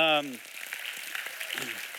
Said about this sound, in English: And for some of you, yeah, that's really cool. You can clap for that.